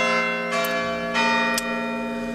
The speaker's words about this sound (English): If you move next to a church, wouldn't you imagine there's a bell there that's going to be rung at some time?